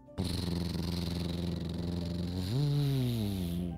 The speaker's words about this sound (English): As Juliana hid right near the tower, a purple pickup truck pulled up.